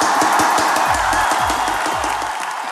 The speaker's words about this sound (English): And church, this is our tradition. When we have a guest speaker, we get up on our feet and we give him a big, tremendous, amazing applause.